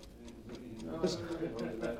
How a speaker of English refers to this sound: What's that? What's what? What's that? That clock ticking. Where is it? Clock? There ain't no clock ticking in here. There is! Listen, guy, you had a couple too many, I guess. Look, I can hear it, I tell you. It's ticking, ticking, ticking.